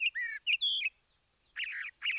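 A teal duck calls with a quick series of three high, whistled notes, then after a short pause gives two rougher, buzzier bursts, with no other sound.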